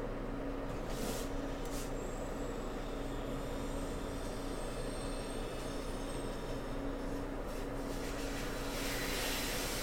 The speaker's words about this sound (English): Yeah, it's 104 degrees outside right now. Hot as fuck. So I got this little mini air conditioner going.